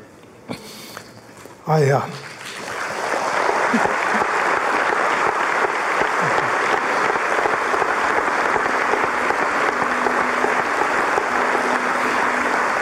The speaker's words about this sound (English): That applause you hear, it matters. It isn't just a polite response. These folks loved Mark.